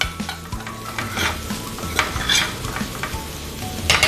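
Rice is stir-fried and tossed in a hot pan to incorporate it, with a steady crackling sizzle and repeated scraping, clattering strokes of a utensil against the pan. No one speaks.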